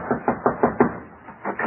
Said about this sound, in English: Well, we'll find him yet. Knock on that door, Grumpy.